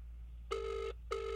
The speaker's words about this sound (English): It's ringing all funny because he's foreign.